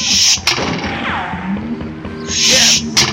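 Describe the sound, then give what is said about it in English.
Sharp bursts of gunfire from men on a river shore crack out irregularly, a lone shot early on, then a heavier burst and another shot near the end, with whistling, gliding tones and rumble filling the gaps. “Besides throwing lead, they got that little engine kid shooting flaming arrows.”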